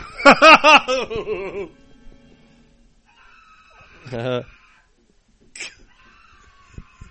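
A man screams in fright, a loud, shrill, wavering scream lasting about a second and a half, followed after a pause by a shorter yelp and a brief faint cry.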